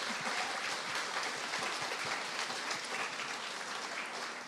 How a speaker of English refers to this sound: So before we move to some questions, can we all just give the ladies a gigantic round of applause for everything that they do?